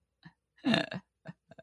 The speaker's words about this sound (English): excuse me, I'm starting to hiccup like crazy. We're going to have to cut this part out. Give me a second here. I just like inhaled and swallowed a bunch of air, and it's now got me like hiccuping.